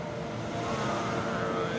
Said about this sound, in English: I'm gonna wait for this truck to zoom by.